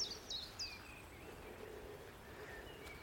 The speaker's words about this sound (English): There's a chiff-chaff.